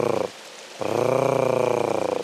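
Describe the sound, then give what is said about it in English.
A female blue duck gives a rough, rattling purr-growl in two bursts, a short one then a longer sustained one, fairly loud with a pulsing texture. “And the female makes a hard case sort of purring noise.”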